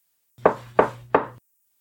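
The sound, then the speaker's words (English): Three firm, evenly spaced knocks on a wooden cabin door, fairly loud, each with a short hollow ring, followed by silence. No voices are heard. “But before night comes, as things are all being taken care of, and you're settling in, getting your stuff situated, there's a knock at your cabin door.”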